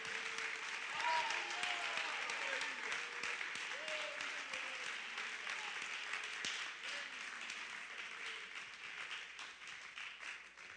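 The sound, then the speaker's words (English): A church audience bursts into sustained applause, giving Jesus a hand clap in praise, dense hand clapping for several seconds with a few voices calling out faintly beneath it. “I wonder if we could give Jesus a big hand clap right now.”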